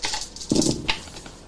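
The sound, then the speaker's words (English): Five dice clatter and rattle together in a brief tumble as they are rolled during a game, with a few sharp clicks tapering off as they settle, fairly quiet and without talk. “All right, roll your dice five.”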